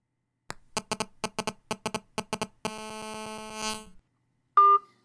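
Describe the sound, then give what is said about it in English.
A phone call rings unanswered in the middle of the night: a rapid series of electronic pulsing tones, then a sustained buzzing tone that swells and cuts off, followed by a short, clear beep. Fairly loud, no voices. “Nobody is picking up their damn phones!”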